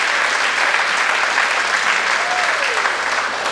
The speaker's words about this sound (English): Well, I think we can clap the Son of God who came to earth for us, don't you? I think we can do that. I think we can.